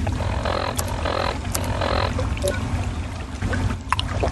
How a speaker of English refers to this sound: All right, this door leads to a corridor, which only 10, 15 feet long, which leads to another door, which leads to a sewer tunnel. Chock full of ghoulies, as you can hear.